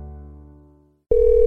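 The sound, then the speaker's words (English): A low sustained tone fades out, then after a brief silence a loud, steady electronic telephone ring starts abruptly and holds to the end, with no voices. “Thank goodness it's you. I was afraid to answer the phone.”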